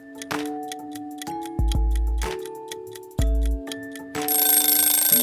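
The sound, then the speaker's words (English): A mechanical kitchen timer, set while making bread dough, ticks and clicks, with a few heavier thunks along the way, before a harsh, bright burst of sound at the end. No one speaks. “You don't want to forget, so set a timer.”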